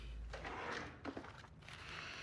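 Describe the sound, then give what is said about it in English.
The top left desk drawer slides open, a rough scraping rumble with a brief clunk partway through, followed by another short slide. Nobody speaks. “Top left drawer. There's a notebook.”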